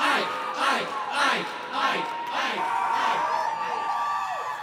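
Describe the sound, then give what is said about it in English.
A crowd of voices chants the name Ike in a steady, repeated rhythm, each syllable burst rising and falling together, fairly loud, with no single speaker standing out. “The crowd begins to chant his name.”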